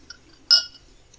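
A single bright clink of a drinking glass rings out with a short, high metallic shimmer, surrounded by quiet, with a couple of faint ticks before and after.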